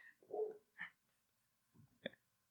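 Several short, yappy barks from papillon dogs at a dog grooming place next door, heard down in a basement, in a quick, irregular burst, with a pause before a final sharp yip; the barking sounds muffled, with no talking.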